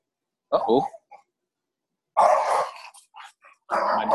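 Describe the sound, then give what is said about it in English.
Two dogs bark and growl at each other through a fence in harsh, snarling bursts: a short yelp-like outburst, a pause, then two longer rough scuffles. “my dog has a friend and they're fighting through the fence.”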